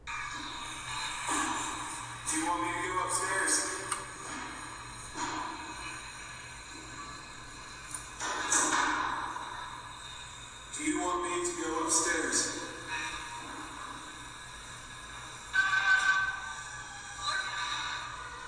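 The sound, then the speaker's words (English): Choppy, hissing radio static from a ghost box, a ghost hunting tool, sweeps on and off, with garbled voice fragments breaking through in short bursts every few seconds, fairly loud and continuous throughout. “And you can see a lot of times you don't get anything but static, and then a voice comes through.”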